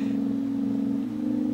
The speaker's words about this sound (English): And so this is a dry signal. So this is just the sound of the tape going to this little amplifier over here.